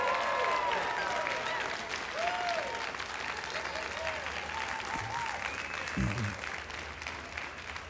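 A crowd applauds steadily, a dense wash of clapping that holds at an even level throughout, with a few cheers and voices rising briefly above it.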